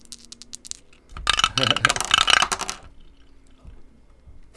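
Dice roll on a table for a sanity roll in a tabletop game: a few light taps, then a busy clatter of hard clicks tumbling for about a second and a half before settling into quiet.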